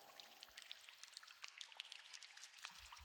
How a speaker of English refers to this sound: The walls are the same stone that came from the tunnel up, and you still hear a little bit of dripping of water.